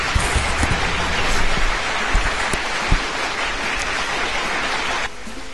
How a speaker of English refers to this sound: So, announcing... … by …, who is in the IRC with us this evening. So I think it deserves a round of applause.